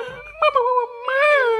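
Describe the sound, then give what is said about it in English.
A voice imitates the god Loki's weak whimper: a thin, wavering, high-pitched whine in two drawn-out bursts, the second rising then slowly sagging, fairly soft and with no words. “Loki whimpered out a weak, I thought we all agreed.”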